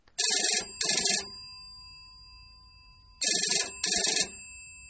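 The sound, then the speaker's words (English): A telephone rings for a call in two double bursts, each pair of bright, buzzy trills separated by a couple of seconds of quiet. The ringing is loud, with no voices. “So what do you say we get him on the phone there”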